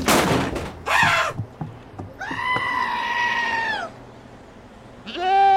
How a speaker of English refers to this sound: It's a goat. It's not a goat. It's an evil succulus from the depths of hell. Look at its eyes. Go on, goat. Shoo.